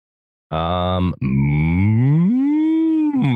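A loud cow moo, starting with a short low bellow, a brief break, then a long drawn-out moo that rises and falls in pitch, heard alone with no talking.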